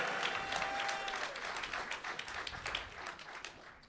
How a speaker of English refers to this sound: Golf clap. Huh? He got a golf clap.